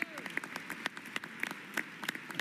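A child claps hands in quick, uneven bursts of sharp, crisp slaps, some louder than others, over a low murmur of background noise.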